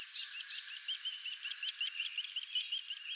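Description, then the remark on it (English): Begging calls of a nestling bird: a fast, steady series of high, thin, insistent peeps, about five per second, clear with no other sounds. “While one species caring for another is rare among birds, the fact that it does sometimes happen shows just how powerful the sound of a begging chick is to an adult bird.”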